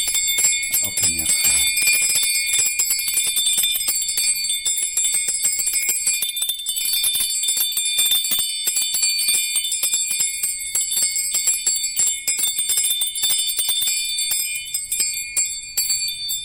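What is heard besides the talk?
small hand bell ringing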